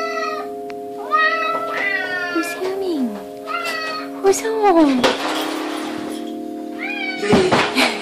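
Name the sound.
domestic cat meowing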